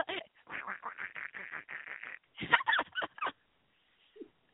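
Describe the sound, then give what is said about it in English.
A person imitates a duck, producing a rapid string of nasal, quacking syllables in a speech-like rhythm, then a few louder, raspier bursts before trailing off. “I'm going to try to talk like a duck.”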